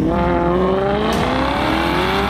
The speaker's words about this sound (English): The sound of the engine, to me, is like music.